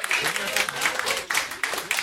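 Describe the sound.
An audience applauds steadily for a couple of seconds as Chris Fairbanks is introduced, a dense wash of hand claps with a few voices cheering and calling out underneath.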